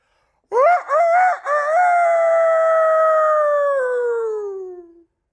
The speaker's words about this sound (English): Immediately, a rooster crowed.